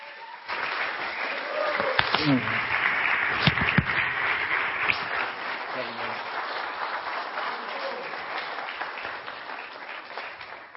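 A crowd breaks into sustained applause as a pastor is welcomed up to the stage, dense steady clapping that holds for about ten seconds with a few cheers and shouts mixed in, tapering slightly toward the end.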